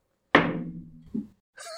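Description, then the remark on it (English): Dice land on a table with a sharp knock that rings out briefly, followed by a softer second bounce and a short, bright rattle near the end. “You know, that dice throwing is sounding better and better.”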